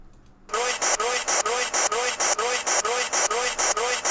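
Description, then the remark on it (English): Loud, harsh radio static bursts in after a brief quiet start, pulsing in rapid regular surges over the spoken word "sight", with a faint, garbled voice buried underneath the hiss. “Sight sounds like the static over top of it.”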